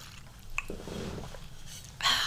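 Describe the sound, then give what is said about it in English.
A quiet sip of ice water with cucumber from a green Hydro Flask, with a soft slurp and swallow, a small click near the start, and a brief louder breathy rush at the end. “It has ice, it has water, and it has cucumber in it. So I'm gonna take a little sip of that.”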